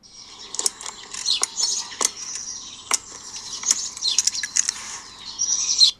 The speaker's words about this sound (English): So it's definitely in the morning. You can hear all the birds singing, but it's the clicky noise that you can hear me doing. I'm doing it myself, actually.